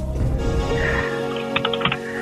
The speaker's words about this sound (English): She's typing it in. Yeah, I can hear it.